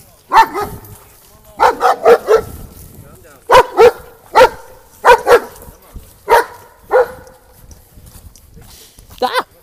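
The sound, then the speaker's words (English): A dog barks loudly in a series of about a dozen sharp, harsh barks, some doubled or tripled in quick bursts, separated by short pauses. “That was a beautiful doggo. Although that was a beautiful very dog. Loud. But a scary doggo.”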